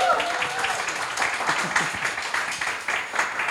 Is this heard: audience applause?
yes